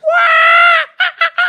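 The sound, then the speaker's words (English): A voice mimics the calls of mockingbirds in a backyard tree with one long, loud, high-pitched squawk followed by three short, quick bursts of the same shrill cry, with no other sound around it. “And there's mockingbirds in the tree in our backyard. What is it that mockingbirds do?”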